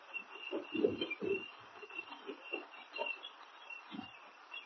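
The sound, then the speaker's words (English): A large owl hoots in a run of low, muffled calls at an irregular pace, over a steady high-pitched hiss like night insects. “It's a huge owl.”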